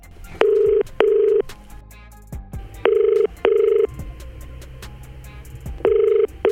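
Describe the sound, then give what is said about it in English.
A phone call rings out with a steady double-burst ringback tone, two short beeps repeating three times at even intervals, with no one talking. “Let's give her a quick call.”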